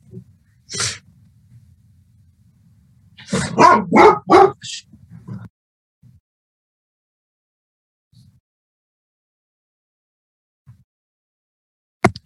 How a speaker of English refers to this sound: Sorry, I'm trying to avoid a barking dog night here.